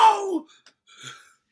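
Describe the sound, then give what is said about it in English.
A loud human 'on fire' scream with a falling pitch, lasting under half a second, followed by a faint, breathy trailing sound. “That's my anyway, on fire scream.”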